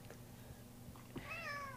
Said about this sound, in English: But I think a lot of people come here for the meows that we have to completely silence every time. They come for the meows, but stay for the meows.